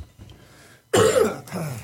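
After a quiet moment, a person coughs twice, a sharp, harsh burst followed a beat later by a second, slightly softer cough, caused by irritation from GERD.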